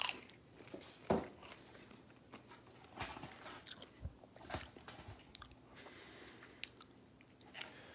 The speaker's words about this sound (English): And then the crunch from the popcorn.